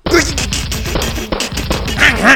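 A loud, continuous chainsaw sound effect, a rough, rattling engine buzz with rapid regular pulses that dips briefly midway and then surges back up for a few seconds.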